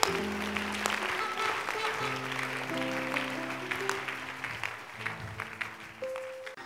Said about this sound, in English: A clap offering for Jesus.